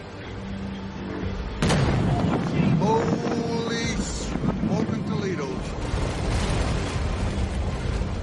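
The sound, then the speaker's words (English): After a low engine hum, a sudden, powerful boom from the 2014 eruption of the Mount Tavor Vor volcano in Papua New Guinea slams in, reaching a boat just under 3 miles away about 13 seconds after the eruption. A sustained rumbling roar and wind buffeting follow, and people cry out in alarm. “The sound of the eruption took about 13 seconds to reach the boat, just under 3 miles away.”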